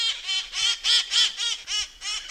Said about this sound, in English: Despite their raucous nature, the parrots delight many tourists and locals. Come to San Francisco, and you might just spy the wild parrots through the fog as they seek their lush diet of pine seeds and juniper berries.